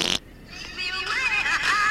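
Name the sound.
fart sound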